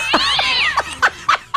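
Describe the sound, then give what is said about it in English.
A cat meows, starting with a drawn-out, wavering yowl and then letting out several short, sharp meows in quick succession. No one speaks. “I guess it's okay for the cats to get into these.”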